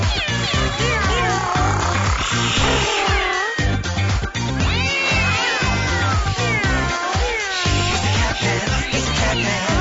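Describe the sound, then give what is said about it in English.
Many voices imitate cats with loud, overlapping meows and wailing, sliding cries over a dense, steady musical backing, filling the whole stretch without pause. “When I say cat, you say meow.”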